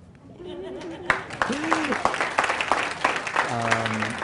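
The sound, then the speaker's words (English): An audience breaks into steady applause, a dense wash of many hands clapping that stays fairly loud throughout, with a few voices calling out over it. “You can applause.”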